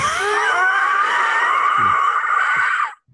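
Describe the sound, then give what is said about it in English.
A person imitates, as a sound effect, the very low hiss of a panicked creature lashing out, with a harsh, raspy, throaty sound held steadily for about three seconds, like gas escaping under pressure, before cutting off sharply. “Just in a blind panic and making this horrible, it's kind of like a sort of hissing noise, almost just like gas escaping from something.”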